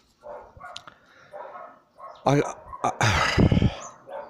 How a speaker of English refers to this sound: The dogs are going off next door.